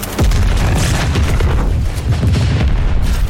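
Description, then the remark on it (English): A loud bomb explosion bursts in with a heavy boom, then rolls on as a continuous low rumble and crackling roar for several seconds, with no voices. “He shoved Jerry away, reached into the bomb casing and...”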